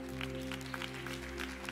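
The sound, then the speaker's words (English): A church audience claps in a quiet, scattered patter of irregular hand claps over a steady low electrical hum. Nobody speaks. “We can clap for that.”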